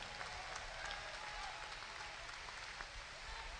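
A crowd claps continuously in a dense, steady wash of applause, many hands overlapping with no clear individual beats, sustained at an even level for a few seconds.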